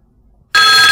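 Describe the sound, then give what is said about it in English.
After a half-second of near silence, a loud electronic phone ring tone abruptly starts and holds steady with bright, tonal harmonics, heard alone without any talking, as an Odin VI talking mobile phone is turned on by pressing and holding its end call power button. “Again, to turn on the Odin VI, press and hold the end call power button until you hear a phone ring sound.”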